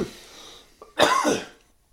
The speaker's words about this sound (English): killed that, didn't I? Cough into the mic.